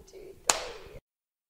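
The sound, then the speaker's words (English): A single sharp hand clap, made to sync audio during a recording, cracks out once, loud and abrupt, then fades quickly into a low, steady background murmur. “Let me just clap again, just so you can sink in.”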